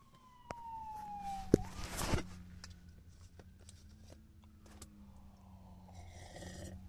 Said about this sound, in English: Excuse the crazy-ass sirens.